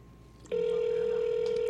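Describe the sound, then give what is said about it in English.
A phone line rings out with a steady electronic tone that starts abruptly after a brief quiet moment and holds unbroken to the end, like a call waiting to be answered. “Live call on the throne. I don't think he's gonna answer.”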